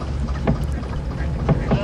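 A boat's low, steady rumble as it approaches and docks right next to another boat, with a few dull knocks as it bumps alongside while ropes are thrown over, and faint indistinct voices in the background.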